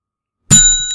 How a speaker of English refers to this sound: Here's the timer. When I hear the bell, I'm going to start timing.